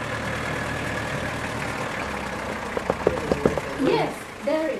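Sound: bus engine idling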